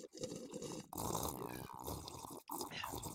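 Loud slurping of a drink in three long bubbly pulls for ASMR, separated by brief pauses for breath, with a wet, gurgling texture throughout.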